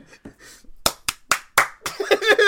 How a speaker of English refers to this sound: Let me clap sync. Yep. Can you do one solid clap, please?